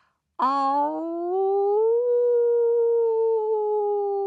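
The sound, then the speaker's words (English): A single long, mournful wolf howl begins abruptly, slides upward in pitch, then holds a steady, sustained note until the end. It is loud, with no talking. “Then Snow Wolf and his mum began to howl, a low, sad howl, pleading at the hunter with their amber eyes.”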